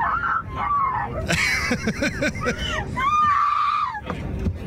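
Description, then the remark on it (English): A woman screams loudly in a few long, wavering, high-pitched shrieks that rise and fall over several seconds, with a noisy, rumbling background. “It's the same scream.”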